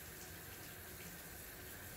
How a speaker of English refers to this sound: you need to turn the shower on. Sorry about that. It's a French shower. Sounded like whale. Sounded like a French whale shower.